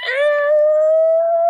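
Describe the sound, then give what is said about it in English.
A person's voice holds a loud, steady, high-pitched squeal for about a second and a half, rising slightly at the end, imitating either a screeching car skid or a wailing guitar note. “I don't know what noise I just made. That's either a guitar or a skid of a car.”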